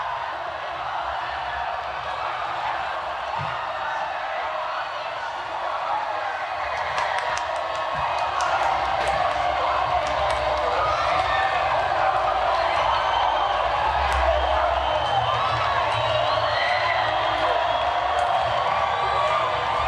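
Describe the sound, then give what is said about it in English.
A large crowd watching a 17-year-old athlete win a gold medal cheers in a steady, sustained roar of mixed voices, with scattered sharp claps and shouts popping out through the middle stretch. “Here's their crowd watching her.”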